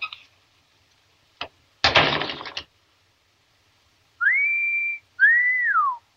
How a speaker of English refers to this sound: Is the regular lip whistle, but I can also whistle with my tongue and then go. So I use those as embellishments to mimic an instrument or to add diversity, and it really helps me interpret the music in a more interesting way.